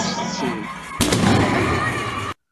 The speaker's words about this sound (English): Those are percussion grenades.